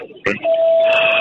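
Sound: phone ringing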